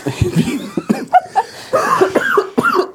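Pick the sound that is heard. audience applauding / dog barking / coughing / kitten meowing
coughing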